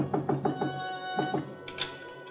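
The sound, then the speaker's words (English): Knocking again on Shinyuk's back door in Chinatown: four quick, evenly spaced knocks, a short pause, two more raps, then a single final knock, all over a steady low hum. “Still in front of me when I knocked again at Shinyuk's back door.”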